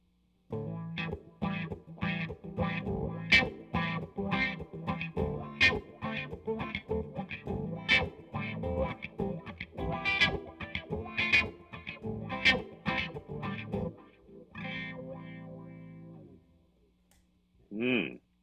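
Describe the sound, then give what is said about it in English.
An electric guitar riff played through wah pedal A in an A/B comparison of wah pedals: choppy, rhythmic strummed chords with sweeping vocal-like filter swells, loud and steady for about sixteen seconds, ending with a brief final strum. “Which is the Best Wah Pedal?”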